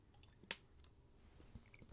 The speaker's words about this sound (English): I'm going to hit this water. Hit this drink. I got some yak in the cup.